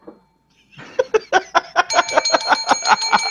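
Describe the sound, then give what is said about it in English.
A bell rung rapidly over and over, roughly a dozen quick bright dings, its ringing tone building and lingering as the strikes continue to the end. “Okay, I always wanted to ring that bell.”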